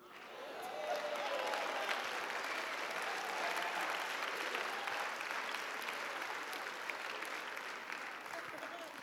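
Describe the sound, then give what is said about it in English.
An audience claps steadily in agreement with what the preacher has just said, a dense, sustained patter of many hands that swells quickly and holds at a fairly loud level for several seconds, with faint voices mixed underneath. “The ones that are clapping agree with that.”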